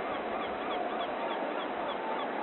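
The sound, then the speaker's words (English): A dense chorus of bird calls from a flock of seagulls and other birds descending en masse on a sports field of play, many overlapping squawks and honks continuing at a steady level, like a large flock calling all at once with no voices present. “And a flock of seagulls and other interested birds now descend en masse on the field of play in a scene that can only be described as Hitchcockian.”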